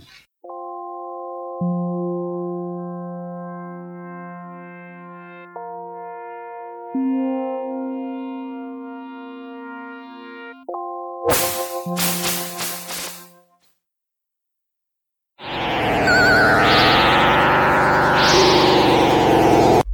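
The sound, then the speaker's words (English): Sega Mega Drive video game music: sustained synthesized chords shifting in steps, a short burst of noisy percussive hits, a brief pause, then a dense, swirling wash of sweeping synth tones. “Here is Mega Drive music number one.”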